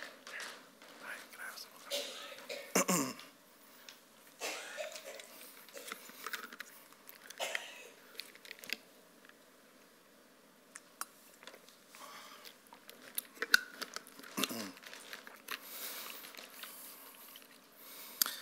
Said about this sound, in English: Wow, I need some water. Excuse me.